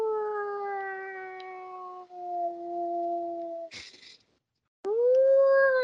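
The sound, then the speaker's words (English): A voice imitates a TIE Fighter's screaming engine with a long, slightly falling howl-like tone, a sharp breathy hiss, a brief pause, then a second loud rising scream. “My TIE Fighter noise.”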